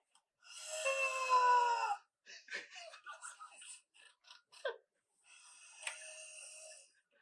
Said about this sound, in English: Oh my god! Snoring like a monkey.